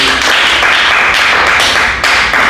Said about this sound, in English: Someone give the Lord a clap.